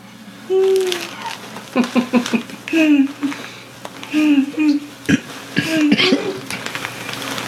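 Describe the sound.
A woman makes a string of short, sputtering fart-like noises with her mouth, several quick bursts in a row, fairly loud.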